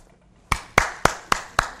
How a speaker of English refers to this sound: I love it when we clap, when I see people clapping. I think it's great. If you feel the need to clap, please do.